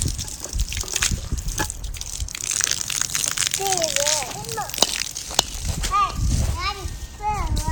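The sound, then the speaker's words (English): Water gushes and sloshes steadily throughout, a continuous rushing splash, while children's high voices chirp and call over it in the second half. “Keep the water away from that, okay?”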